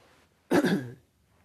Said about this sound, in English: I keep coughing. I'm gonna, like, cough really well.